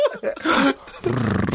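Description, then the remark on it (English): A wolf coming out of bushes by the side of a highway growls and snarls, loud and rough, in two harsh bursts separated by a brief lull, with no voices over it. “Oh no, wolf's coming out of the bushes.”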